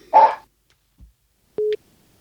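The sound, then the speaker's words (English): A small dog named JB gives one short, sharp yap at the end of a phone call, then after a pause a brief steady electronic beep sounds, like a phone line tone. No one speaks. “That little bark at the end was JB.”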